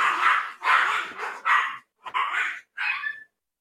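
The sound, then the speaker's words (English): A puppy barks in a rapid run of about six high-pitched yaps, fairly loud, with short gaps and a final yelping bark, no one talking. “Puppy's going nuts.”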